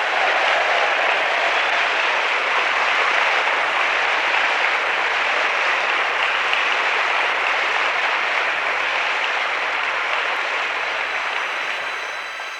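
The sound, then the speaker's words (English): A loud, dense roar of clapping from a large crowd greeting Joey Smallwood's announcement of free tuition and a salary for Memorial University students, sustained and steady for the full length before fading slightly at the very end. No one speaks over it. “When Joey Smallwood announced free tuition and a salary for Memorial University students, he was met with thunderous applause, because many see post-secondary education as something that benefits both individuals and society.”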